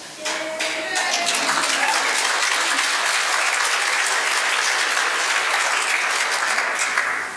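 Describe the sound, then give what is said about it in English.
A crowd bursts into sustained applause at the mention of President Barack Hussein Obama, dense and loud clapping that swells within the first second and holds steady for several seconds, with a few faint cheers mixed in. “I shall not join the applause with an eye to our tax status.”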